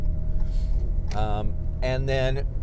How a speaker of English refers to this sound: So there's, you know, there's right now I'm driving on snowy roads. So I used four-wheel drive to get out of my driveway because I'd never be able to get out of my driveway in two-wheel drive in this truck.